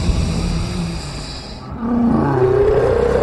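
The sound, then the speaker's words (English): A deep, growling monster roar swells in two long waves, loud, with a rough rumbling texture and a rising snarl in the second half. No voices are heard. “It roars at me, and I can feel its phlegm like acid in the room, but I will not be moved.”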